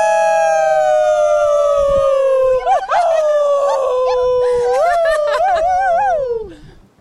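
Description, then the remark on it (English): People standing on top of a peak howl like wolves in one long, loud, sustained cry that slowly slides downward, wavering and breaking into yips near the end before fading out. “Oh yeah, we howled. And howled.”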